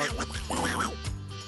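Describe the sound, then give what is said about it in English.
A person does a nasal, wavering duck-quack imitation, a few raspy honks run together over about a second, moderately loud, with no actual speech. “I notice I can make duck noises, but I can't talk as a duck.”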